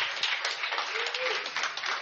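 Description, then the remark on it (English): An audience at Resurrection Center applauds for those who have been baptized, a dense, steady wash of many hands clapping at once with no single claps standing out, holding an even, moderately loud level for the whole two seconds. “Give a round of applause to all those who have been baptized.”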